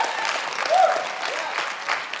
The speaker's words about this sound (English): Now give God a good clap offering. Come on. Come on. Come on. Come on.